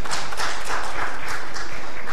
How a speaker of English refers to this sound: And I applaud you if you're still married today. That's an accomplishment in our society. Go ahead, give yourself a hand.